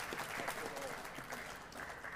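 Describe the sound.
An audience applauds steadily, a dense patter of many hands clapping at an even level throughout, with faint voices mixed into the crowd noise.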